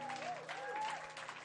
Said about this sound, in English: God bless you. Clap for them.